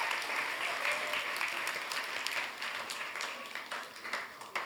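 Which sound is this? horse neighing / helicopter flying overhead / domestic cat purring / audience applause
audience applause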